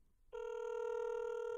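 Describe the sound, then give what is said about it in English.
After a brief moment of quiet, a steady electronic telephone ringback tone starts on an outgoing call to a woman's phone. It holds evenly and clearly until the end, with no voices. “mainly let's see if she answers her phone.”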